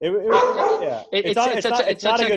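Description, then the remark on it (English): Loud dogs yelp and bark excitedly while being fed, a drawn-out whining howl followed by a rapid run of overlapping high barks with barely a pause between them. “He's like, Dad, sorry, these are my dogs. They're being fed right now.”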